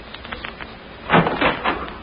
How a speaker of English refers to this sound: Come along. Listen to the door. I'll open it and you step in